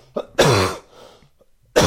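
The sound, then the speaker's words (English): A loud, wet, chesty cough bursts out, followed by a quieter rasping breath, then another harsh cough begins at the end. No talking. “Oh, that's a chesty cough.”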